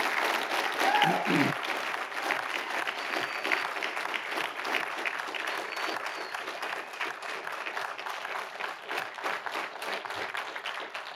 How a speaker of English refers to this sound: Thank you all so much. Thank you, choir. Thank you. Let's give them a big round of applause.